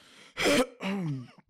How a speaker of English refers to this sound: No, I'm just clearing my throat, man.